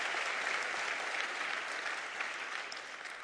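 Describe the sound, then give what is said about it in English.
A church audience applauds the youth leaders, youth choir and music director with steady, dense hand clapping, a continuous bright wash of many overlapping claps held at an even, moderately loud level and easing slightly toward the end. “Let's get a Lord a hand clap for him.”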